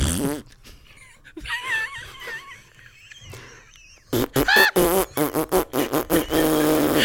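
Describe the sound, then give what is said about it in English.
A loud, sputtering fart sound effect bursts in after a few seconds of quieter, squeaky noises, breaking into a rapid series of rhythmic, wavering blasts. “Are you telling me that if an enormous fart ripped over the Shire, every hobbit would not wake up laughing?”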